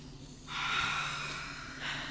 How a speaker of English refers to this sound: Do we need to meditate and center ourselves after that? I'm like, whoo, take three deep breaths.